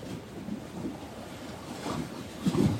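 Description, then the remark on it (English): Water splashes and laps steadily, with a rougher surge of splashing near the end and a constant wash of wind-like noise underneath. “Thank you to the splashing, energized water and the big sun.”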